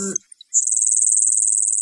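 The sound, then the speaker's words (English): A voice imitates the buzzy, insect-like category of bird call: a steady, high-pitched, finely pulsing buzz that holds for over a second after a short burst of speech. “And yet another category is a buzzy sort of insect sound. So if you're like zzzz.”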